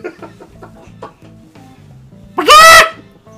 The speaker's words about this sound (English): Chickens.